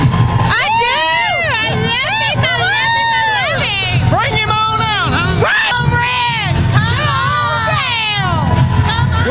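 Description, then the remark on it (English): A concert crowd of about 1,500 people screams and yells continuously, many high voices overlapping in a loud, sustained roar that never lets up, calling for an encore. “As you can hear, 1,500 people here screaming for some more for ….”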